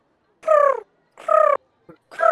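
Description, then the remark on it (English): A person imitates a pigeon's call with three short, evenly spaced voiced coos, each about half a second long, fairly loud with no other talking, to lure and catch a pigeon. “I'm going to catch a pigeon by putting out my claw on the floor and going.”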